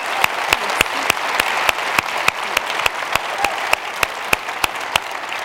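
A conference audience applauds the leader of the team that made the event possible, a steady, dense wash of clapping with sharp individual claps standing out at an even pace throughout, no voices heard.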